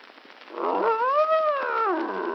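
A bear growls once in a long, drawn-out moan that rises and falls in pitch for about two seconds, loud, with no one talking.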